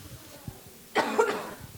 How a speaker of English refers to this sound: Hopefully I won't cough too much. But I've been doing that since beginning of the year, so it's par for the course.